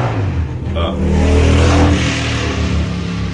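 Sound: motorbike engine revving outside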